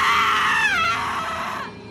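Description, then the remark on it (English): A mother's piercing scream rings out loud, shrill at first, then bending downward in pitch and trailing off into a strained wail within about two seconds. “A surge of adrenaline jump-started by the piercing scream of my mother.”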